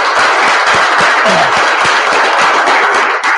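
A crowd breaks into a dense, steady round of applause, many hands clapping together loudly and continuously for a few seconds with no voices over it.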